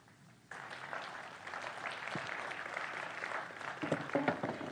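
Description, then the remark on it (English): A church audience breaks into a round of applause for a man coming on stage, steady dense clapping that starts abruptly after a brief quiet moment and swells slightly louder toward the end. “So give Chris a round of applause as he comes on stage.”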